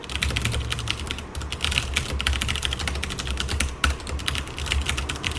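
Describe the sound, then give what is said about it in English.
Steady, rapid typing on a computer keyboard by a person sitting at a desk in a home office, with a continuous stream of soft clicky keystrokes and a low background hum, no voices. “Here, you can hear some typing.”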